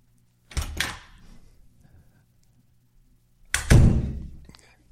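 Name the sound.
door opening and closing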